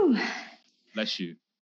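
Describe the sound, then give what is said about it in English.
A single sharp, breathy sneeze bursts out, followed after a brief pause by a couple of short voiced murmurs. “Bless you. I don't have Corona, don't worry.”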